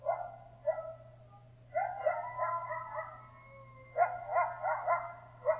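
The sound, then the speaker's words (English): Young coyote pups yelp and bark in quick, overlapping bursts, high-pitched, with a steady low hum underneath and no one talking. “Yelping can be a celebration or a criticism among a small group, often heard during play among pups.”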